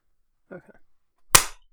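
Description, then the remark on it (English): A brief murmured voice, then after a short pause a single sharp, loud hand clap with a crisp attack that quickly fades. “I didn't hear you clap.”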